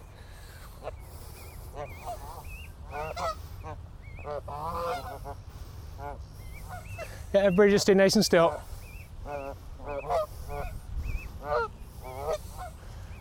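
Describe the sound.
A family of geese, with an orphan nearly in the group, honks repeatedly in short, nasal calls, swelling into a loud flurry of overlapping honks midway, while a person speaks quietly over the low outdoor rumble.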